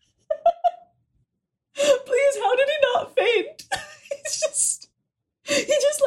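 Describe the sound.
A short, polite gasp, voiced quickly, followed after a pause by a person talking at a lively pace. The gasp sounds like someone acting out surprise.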